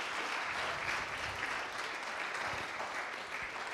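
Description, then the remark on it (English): Sustained applause for God after three baptisms, a dense, steady wash of many hands clapping at an even, fairly loud level throughout, with no voices standing out. “Why don't we just give God another big round of applause for all he's done in their lives?”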